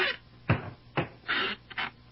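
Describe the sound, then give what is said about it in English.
A barber chair mechanism squeaks and rasps: four or five harsh, grating creaks in an uneven rhythm, with the last two strokes longer and scratchier, and no voices. “It seems to have picked up a bit of a rasp somewhere.”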